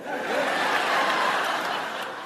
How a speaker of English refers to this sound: And by the way, I really want to thank all of you for cheering me like that, because I never take it for granted, you know?